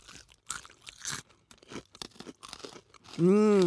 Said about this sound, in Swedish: Nu ska jag försöka äta här så att det knaprar då. Nu gör vi alla det på samma gång. Nu har jag fått lite sån ostmassa. I mitt huvud knaprar det.